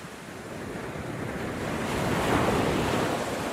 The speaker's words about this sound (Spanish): Todo terminó de pronto y no hubo más que oscuridad y el golpear de las olas contra los escalones de piedra.